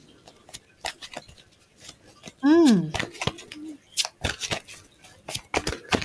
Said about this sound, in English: And what I'm doing is I'm shuffling the cards away. And I'd just like you to let me know when to stop shuffling. And we'll see what comes up.